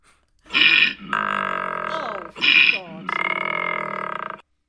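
Two loud snore cycles, each a harsh, raspy inhale followed by a long, droning, buzzy exhale with a steady low pitch, in a slow, regular rhythm.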